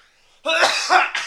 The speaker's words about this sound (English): Bless you? Question mark. Not really sure what his body just did there. Sneeze cough. Snick off. Sounds like a Russian hockey player.